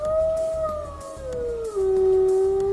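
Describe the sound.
A person on someone's lap howls like a wolf cub in one long, sustained, fairly loud cry whose pitch glides gradually downward over about three seconds, with no talking and only faint background noise.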